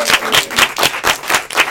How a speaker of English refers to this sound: Ladies and gentlemen, a round of applause for our fantastic panel.